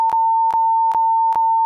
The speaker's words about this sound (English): You definitely made that beep longer than you needed to. That's so unfair. Beep's still going.